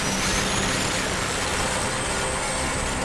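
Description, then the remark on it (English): A crunchy, distorted bytebeat synth patch, played at the 6 volt setting, drones steadily. It is a harsh, dense buzz with gritty noise across the whole range and faint sustained tones, holding at a constant loud level with no talking. “Let's hear the 6 volt again. Oh yeah, crunchy.”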